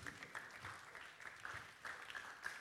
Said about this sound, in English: Clap for Solomon.